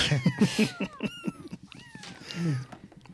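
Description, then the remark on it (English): A small kitten meows repeatedly in high, thin cries, several short mews in quick succession, fairly clear with no talking. “So it's just basically just meowing. Little kitten meows.”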